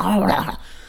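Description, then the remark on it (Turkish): A person's voice briefly imitates a dog, letting out a short, gruff bark-like yelp with a growly edge, fairly loud, then trailing off into quiet. “Hemen havlamaya başlarım öyle, hem de ısıra ısıra.”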